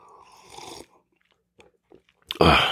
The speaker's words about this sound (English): Let me take a sip of my beverage here.